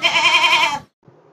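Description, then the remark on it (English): A single loud, wavering goat bleat lasts most of a second, then cuts off abruptly and leaves a brief, faint low rumble. “I didn't mean the animal GOAT.”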